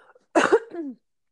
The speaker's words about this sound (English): Sorry, I got a cough.